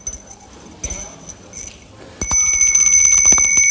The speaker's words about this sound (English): Whoa, that's a bell.